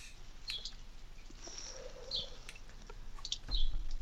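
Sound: birds chirping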